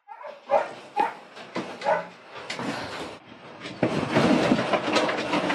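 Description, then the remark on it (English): A pup poisoned by 1080 poison yelps and whimpers in distress, giving several sharp, high cries in the first two seconds before a loud, rushing, rumbling noise builds up and covers the rest. “There's another pup being poisoned by 1080.”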